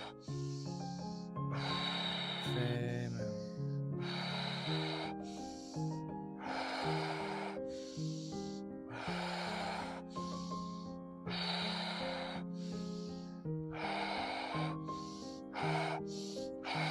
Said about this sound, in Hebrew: קצב של הנשימה, 20 נשימות, אנחנו הולכים עד הסוף עם הגוף, נשים כמה שיותר לעומק. אחרי 20 נשימות אנחנו נגביר את הקצב, הקצב מהיר, אנחנו הולכים עד הסוף.